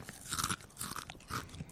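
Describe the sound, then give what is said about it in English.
Crunching of a potato chip: three crisp, brittle bites spaced about half a second apart, fairly quiet, with no talking. “The final crunch.”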